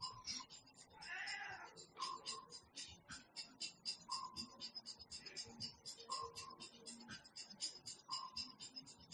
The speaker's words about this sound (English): Oh, you got distracted by the cat.